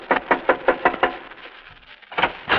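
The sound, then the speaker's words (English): Knocking on the door of a tiny farmhouse on Highway 63: a quick run of about six firm raps, a short pause, then two more knocks. Fairly loud, with no voices. “I was hitching rides one day, and when no rides came, I went up to the door of this tiny farmhouse on Highway 63.”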